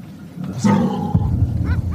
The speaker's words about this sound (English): You hear that dog? That dog's fired up over something.